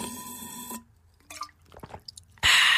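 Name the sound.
water dripping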